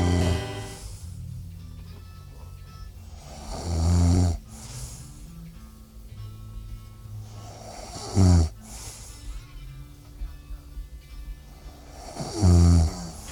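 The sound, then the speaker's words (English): A person snoring in their sleep: three loud, rasping snores about four seconds apart, with quieter breathing between them and faint music in the background. “Who's credited as the snoring on here?”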